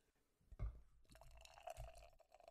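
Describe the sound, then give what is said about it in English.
Beer being hard-poured into a glass, a splashy glug followed by a steady, fizzing rush and bubbling that builds as the glass fills, no voices present. “I did a hard pour.”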